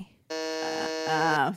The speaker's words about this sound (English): But you didn't get it, so that's why there was the buzzer.